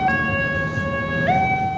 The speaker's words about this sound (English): If you think about like an ambulance driving away from you, the pitch of that sound changes because the wave gets stretched out.